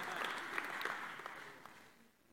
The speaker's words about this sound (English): You can give a clap to the gospel.